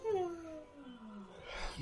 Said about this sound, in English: Stop yawning.